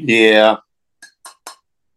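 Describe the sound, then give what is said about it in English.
A brief voiced exclamation with falling pitch, then three short, sharp glassy clicks in quick succession as a 40-ounce glass bottle of Colt 45 malt liquor is cracked open, the clicks fairly loud against silence. “We're gonna crack that bad boy open now.”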